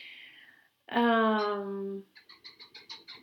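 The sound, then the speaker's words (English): A loud bird call from a bird that flew to a window and is now sitting on a rooftop: a drawn-out, slightly falling cry, followed by a quick series of about eight short, high chirps in a steady rhythm. “That was a very majestic bird that flew to my window, and now it's sitting on my rooftop.”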